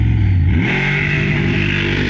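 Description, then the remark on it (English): A loud monster truck engine revs hard, its deep rumble climbing in pitch before holding at a steady, throaty roar as the truck launches from a drag race start. “The actual jumping of an actual monster truck.”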